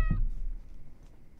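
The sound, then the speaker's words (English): A single short, bright cat meow right at the start, then fading into quiet background noise with no talking. “Can you get the kitty in here?”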